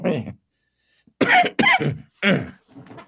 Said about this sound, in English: Got a little chemtrail cough going on here. They've been spraying Hood River, and it blows over this area. Everybody here is like sneezing like crazy.